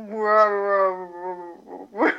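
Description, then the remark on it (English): A person imitates a bear's roar with a drawn-out, droning vocal growl, then follows it with a couple of rough, breathy bursts, fairly loud. “And this is all in bear speak. Yeah. So you're just basically just roaring.”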